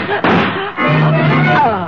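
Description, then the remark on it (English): A sharp gunshot bang cracks out near the start, followed by a second duller report, with a voice sounding underneath and continuing afterward. “His gun spoke before he realized that Griffity was drawing on me.”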